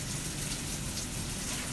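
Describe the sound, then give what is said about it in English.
Steady rush of running shower water spattering down onto a surface, continuous and even throughout with no voices. “Step in my shower.”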